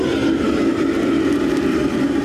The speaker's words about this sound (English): Yeah, like when it comes to cooking in a Cantonese kitchen, this reaction is a bit different because the food is cooked in a wok under a short period of time on a stove that looks and sounds like a rocket engine. It sounds just like this.